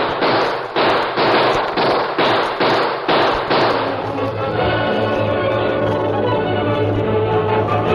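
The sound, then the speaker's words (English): A rapid run of about eight sharp, loud gunshots on Main Street in steady succession over a few seconds, then the shooting stops and a sustained ringing, tonal background carries on alone. “Hey, listen. What's that? Sounds like... Gunfire. It's over on Main Street.”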